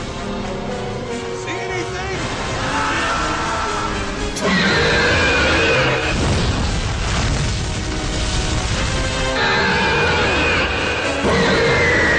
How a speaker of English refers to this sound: That is a... Just like Godzilla. That is like a Godzilla-Rodan-Mothra like blend of a roar.